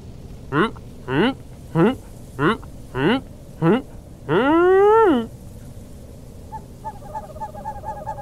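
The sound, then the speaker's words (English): Owl hoots made by blowing through cupped hands: six short, evenly spaced hoots, then one longer, drawn-out hoot that swells and fades. The hoots are loud, followed by faint, quiet tones. “Back to practicing my owl noises.”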